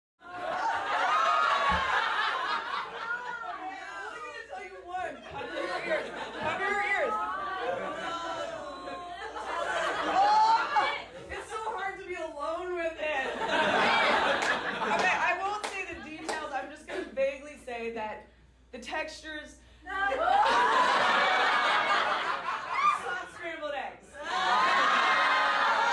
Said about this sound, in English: and I was describing it at a stand-up show the other night, and people were screaming, no, no. I should play that clip here, actually, of people screaming no when I was describing the show.